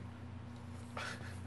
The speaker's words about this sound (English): Oh, fucking dogs.